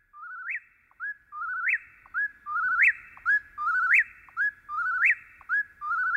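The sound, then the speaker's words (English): An Eastern whip-poor-will sings its clear, whistled three-note phrase over and over, about once a second, each call ending in a sharp upward snap. Loud, with no other sounds. “In September of 1851, Henry David Thoreau wrote, "The whippoorwills now begin to sing in earnest about half an hour before sunrise, as if making haste to improve the short time that is left them.”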